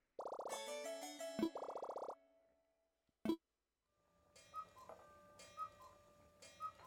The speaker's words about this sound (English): Ooh, listen to that. I was never in here at the hour change. He has a cuckoo clock that's chiming right now. That's midnight.